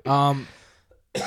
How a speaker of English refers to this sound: Fucking coughing on me, dude. Yep. I coughed on you, bro. Yeah, you just coughed my arm, you douche. My bad, bro. It's not like a sick cough.